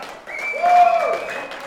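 An audience claps in a steady, dense patter for under two seconds, with a sustained high whistle-like tone riding over the applause, fairly loud throughout.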